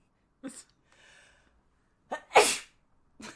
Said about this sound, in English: I'm gonna sneeze again, I think. Oh, okay.